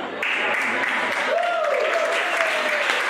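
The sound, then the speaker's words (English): A stand-up comedy audience at a Steve Hofstetter show breaks into steady, dense applause after a joke about raising kids, holding loud and even throughout, with a single rising-then-falling whistle cutting through the clapping partway in. “Statistically, too many of you are applauding, but...”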